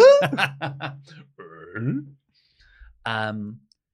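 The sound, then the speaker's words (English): A stifled burp held mostly in the throat, coming out as a few clicky, gulping voiced bursts with short pauses between them, then a final muffled croak. “Ever since then, I feel like that was a little valve being released, and I keep feeling like I'm going to burp, but I haven't, and that was one of those.”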